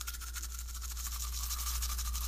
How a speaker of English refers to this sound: Here's my toothbrush. This is how I brush my teeth.